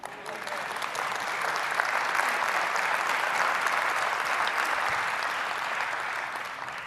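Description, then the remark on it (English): Steady applause from a large audience at Community Christian Church, a dense, even wash of clapping that holds for several seconds at a consistent level before tapering slightly at the end. “I'll wait for your applause.”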